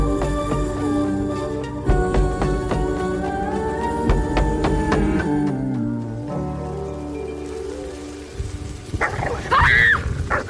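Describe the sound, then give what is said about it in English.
A female dog barks in a quick series of sharp bursts over a dense, noisy background, then lets out high, wavering whimpers toward the end. “Give her your hand. What? The dog. Let her sniff you and she'll calm down.”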